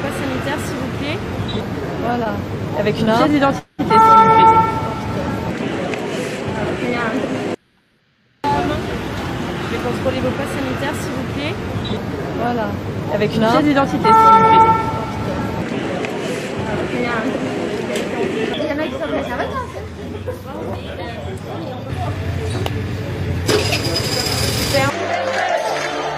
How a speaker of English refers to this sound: And those of you who are just listening, I probably don't know what that was. That was just a bunch of traffic noise.